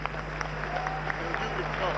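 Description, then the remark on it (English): An audience claps for a contestant in a laughing contest in a steady, dense patter of many hands, fairly soft and continuous for the whole two seconds, with a constant low hum underneath and a faint murmur of voices. “Clap for them.”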